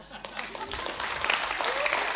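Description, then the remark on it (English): An audience breaks into applause for Jesus during a sermon, a dense, steady wash of many hands clapping that swells quickly after a brief quiet start and stays loud, with a few voices mixed in. “If you agree, give him an applause.”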